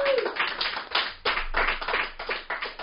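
A small audience breaks into steady applause, a dense patter of many hands clapping together at an even, fairly loud level throughout, with a brief faint tone at the very start.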